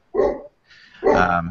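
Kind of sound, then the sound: animal, dog barking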